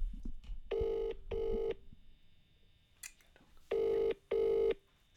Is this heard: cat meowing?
no